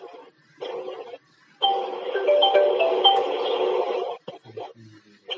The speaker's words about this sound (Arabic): طيب حد يرن عليك.